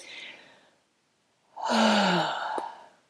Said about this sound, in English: Breathe. So A, accept. B, breathe. Really deep breath in.